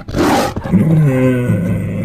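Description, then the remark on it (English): A female tiger roars as she lunges at a deer: a loud, harsh burst of breath rolling into a deep, rumbling growl that holds for a couple of seconds before easing off. “The tiger lunges forward as the deer leaps away, evading her paws.”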